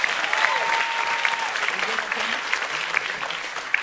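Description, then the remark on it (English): Steady, dense applause from an audience, a continuous wash of many hands clapping at an even loudness for the full few seconds, with faint crowd murmur and a brief tone underneath. “They are clapping for you with hate.”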